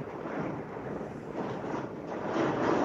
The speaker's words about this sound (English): can you hear the rain? There's rain? Wow. Yeah, the rain is just pounding the shit out of the fucking window. That's awesome.